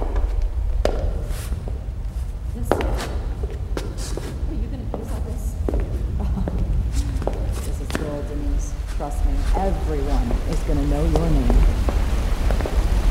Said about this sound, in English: Follow the sound of the falls! This is it! This way!